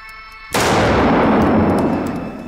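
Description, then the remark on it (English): Two rapid revolver shots, one for each of two targets, fired so fast they sound as one loud blast after a moment of quiet, then roll into a long, booming echo that slowly fades. No one speaks. “2 bullets, and I heard 1 shot, and that was it.”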